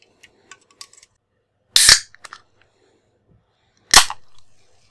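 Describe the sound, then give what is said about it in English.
A can of Coca-Cola being opened: two sharp, bright cracks a couple of seconds apart, each trailing into a brief fizzing hiss, with faint clicks and handling noises between and no talking. “While you do that, I'll have a can of Coca-Cola.”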